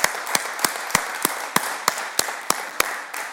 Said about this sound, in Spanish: Ok, voy a pedir que den un aplauso. Dar un aplauso conmigo aquí. Un aplauso ahí en casa.